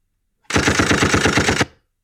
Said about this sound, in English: Well, I wish we had figured out a way to end that, but maybe we should just end on the gunshot thing, and it just cuts out on that.